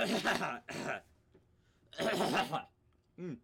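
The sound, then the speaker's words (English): Someone clears their throat in several loud, raspy bursts with brief pauses between them, ending with a short voiced grunt. “Clear my throat, but very good.”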